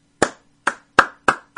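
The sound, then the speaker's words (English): Five sharp hand claps in a quick, fairly steady rhythm, each a crisp slap with a short decay, given in congratulation to new Hall of Famer John Randall, with no talking and only a faint low hum between them. “There, a quick little clap.”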